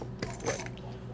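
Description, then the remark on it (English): Small hard objects clatter and rattle in a few quick bursts, like dice being scooped up and dropped onto a table, over a faint steady hum. “I think I'm going to need all the rest of these dice.”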